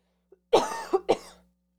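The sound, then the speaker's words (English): A fairly loud cough followed by two quick throat-clearing hacks in rapid succession, with no talking over it and silence before and after. “Almost got through an episode without coughing.”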